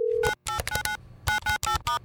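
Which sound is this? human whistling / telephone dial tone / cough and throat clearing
telephone dial tone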